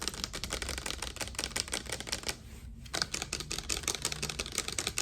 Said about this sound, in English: How about tapping?